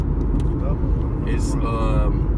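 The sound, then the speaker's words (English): A steady, heavy low-end rumble of a car engine heard from inside the cabin, continuous throughout, with a faint voice briefly rising over the drone. “In the car.”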